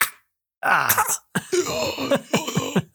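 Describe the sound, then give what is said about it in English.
A person vocally imitates the strained, groaning gasp and harsh hacking coughs, with spit hacked up, of an anime character punched in the stomach, fairly loud, in several quick bursts with no other sounds. “And then they finally like cough and there's a bunch of spit they hack up for some reason.”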